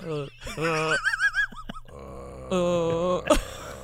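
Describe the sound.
A low voice imitates a whale call: drawn-out, wavering moans with rising and falling pitch, broken up by a few short swooping hoots, fairly loud throughout.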